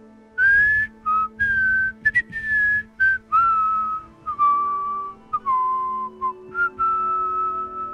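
A person whistles a slow, wavering melody of sustained notes with short gaps between phrases, looking up at the broad stony ceiling of a large temple area, the tones clear and fairly loud and heard back in a slight echo over a faint low hum.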